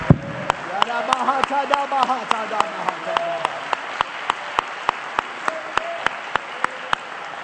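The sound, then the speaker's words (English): An audience clapping their hands unto the Lord during a church service claps in a steady, even rhythm, sharp crisp claps repeating about every third of a second, with voices heard over the first half before the clapping carries on alone. “You're clapping unto him.”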